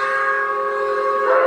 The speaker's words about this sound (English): So is that chugging locomotive sighs and whistles from another emancipated township.